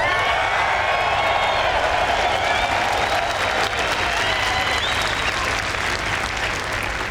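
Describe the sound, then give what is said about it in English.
A large golf crowd at St Andrews applauds steadily as Tiger Woods is announced on the first tee, a dense wash of clapping with scattered cheers and whistles rising through it, sustained and loud for the full stretch without letup. “I mean, Tiger being announced on the first tee at St. Andrews has everyone on their feet.”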